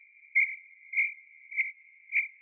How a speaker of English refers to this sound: Insert crickets here.